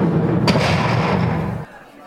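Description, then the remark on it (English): A door slams shut with one sharp, heavy bang, followed by a low rumbling boom that lingers for about a second before cutting off abruptly. “I slammed a door, and I'm still here.”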